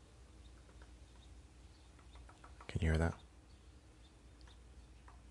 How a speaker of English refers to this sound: I've never seen that before. I'm literally watching a woodpecker peck at a palm tree branch. Never seen that before.